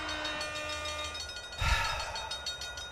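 A steam train whistle blows a steady, sustained tone over hissing steam and rumbling rail noise, with a louder chuffing burst midway through. No one speaks.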